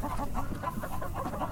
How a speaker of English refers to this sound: When you hear them cackle, like that one bird is, it means they just laid an egg. That's cool. Yeah. So the more cackling you hear, the better.